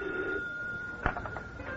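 A telephone bell rings steadily at moderate volume, a sustained tone broken by a sharp click partway through, with no voices.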